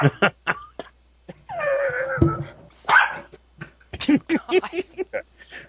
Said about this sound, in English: Oh, fierce guard dog. Shut up. You're going to come over here and kiss up to me now? No, I'm not throwing your toy.